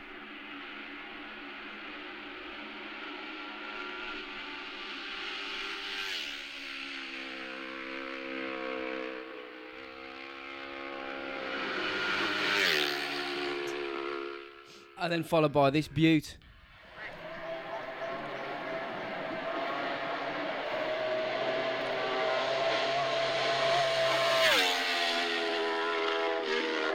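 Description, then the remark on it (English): Racing motorcycles whine past at the Iron Man TT road race, their high buzzing engines rising and falling, with one sharp, loud pass midway through. People talk over the engine noise. “He's at the Iron Man TT, apparently.”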